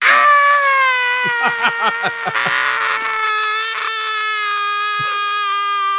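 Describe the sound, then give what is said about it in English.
A voice imitates a boy screaming at the top of his lungs, one long, shrill, sustained shriek lasting several seconds, wavering and breaking briefly partway through, with no other talking. “you grab him, and you manage to secure him, and he starts screaming at the top of his lungs.”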